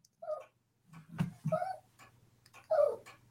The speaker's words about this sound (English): I'm sorry, I got a whiny dog and it's really bothering me.